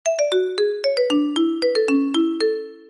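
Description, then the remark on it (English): A Nokia mobile phone ringtone, as on the Nokia 3315, plays its quick, bright melody of about a dozen clean electronic notes, each ringing out briefly at a steady, brisk rhythm, with no voices over it. “I still remember the Nokia 3315. Do you remember the ringtone?”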